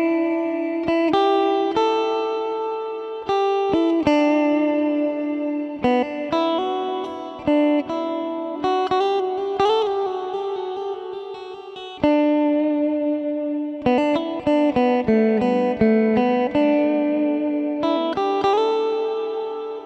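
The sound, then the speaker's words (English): An electric guitar plays a slow melodic phrase of single notes and chords through a Cloudburst ambient reverb pedal, each note blooming and washing into a wide, lingering tail. It's played alone, with no talking. “A very nice reverb, very pretty, and very kind of, you can see why it's called ambient.”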